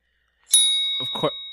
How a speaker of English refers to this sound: Oh boy, four down. The bell's going fast.